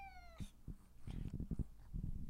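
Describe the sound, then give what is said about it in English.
A cat meows once near the start, a clear descending cry, followed by soft thumps and low rustling movement with no one speaking. “Mr. Cat, chill the fuck out. I'm telling a story, dude. This is what he does all day, all night.”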